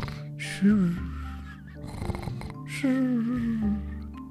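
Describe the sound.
A voice imitates snoring: two loud, drawn-out, rumbling snores separated by a quieter raspy breath, the second snore longer and slowly trailing off.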